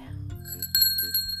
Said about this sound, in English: Oh, bell. Yeah, I have a little bell right here.